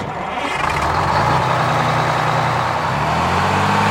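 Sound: bus engine idling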